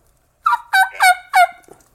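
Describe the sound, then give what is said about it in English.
A dry turkey mouth call whose reeds have not been separated, the reed not vibrating enough to rasp, gives four quick, clear high-pitched yelps with no rasp, followed by a faint trailing note. No one speaks. “The reed's just not vibrating to get that rasp, so it's just all high pitch stuff.”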